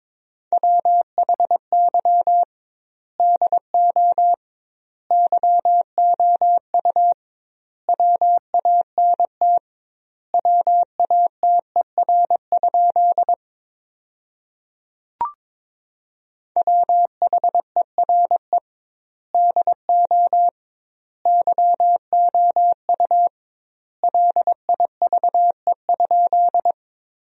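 Morse code tones at 22 wpm sending practice sentences built from the top 200 words, with double word spacing: a single steady mid-pitched beep keyed into quick dots and dashes, grouped into words separated by wide pauses, with one brief click midway and no voices.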